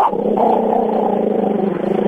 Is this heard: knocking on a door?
no